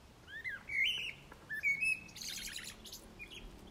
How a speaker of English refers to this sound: So we've had robins and the birds are wonderful here.